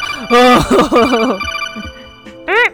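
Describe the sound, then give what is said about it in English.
A voice imitates the Metal Gear alert sound effect: loud, bright, ringing tones with wavering pitch over about a second, then a shorter sharp rising-and-falling burst at the end. “Makes the Metal Gear alert sound.”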